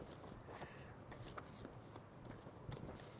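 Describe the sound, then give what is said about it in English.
Steady riffling and rustling of a deck of paper cards being shuffled, a continuous soft crackle with brief sharper flicks, fairly quiet with no talking over it. “Okay, now they're properly shuffled.”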